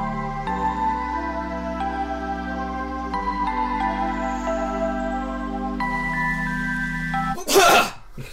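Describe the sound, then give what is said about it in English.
A steady, sustained musical drone plays for several seconds, then cuts off as a single loud, harsh cough bursts out near the end. “The sound of the coughing means we are back.”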